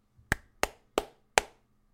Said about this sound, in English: Claps for him.